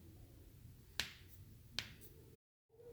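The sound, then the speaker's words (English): Two sharp, crisp two-finger claps, a little under a second apart, made to imitate the bones in Appa's legs popping and crackling as he stands up, over a steady low background hum that briefly cuts out near the end. “When Appa stands up, the bones in his legs pop and crackle like cloth flapping in the wind. I clap with two fingers to make this sound.”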